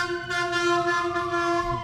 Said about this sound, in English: Siren and honking out the window.